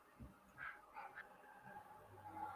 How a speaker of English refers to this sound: Sorry, dog's barking.